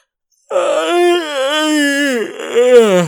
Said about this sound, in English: Does that yawn mean it's time to go?